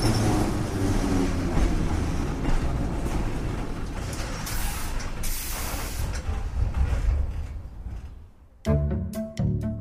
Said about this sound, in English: We were bone weary by the time our train rolled into San Francisco.